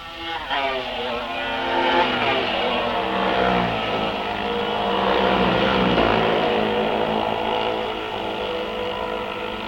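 Racing motorcycles on lap one, approaching a bridge corner, roar past in a loud, continuous stream, their high engine whine sweeping down in pitch as each machine passes, with another burst of revving around the middle.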